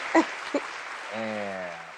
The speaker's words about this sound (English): Can we get our flowers? Get an applause. Get an applause. Get an applause.